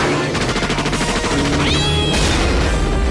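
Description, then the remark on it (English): A man in a film lets out a short, rising cat-like yowl as he leaps from a vehicle, nearly buried under loud, rapid bursts of gunfire and crashing action noise. “Does that guy make a cat sound as he leaps from the vehicle? He goes, "Rawr!"”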